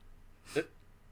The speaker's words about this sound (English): So the first part of this scene is him barging the lab. I'm just going to hit my desk.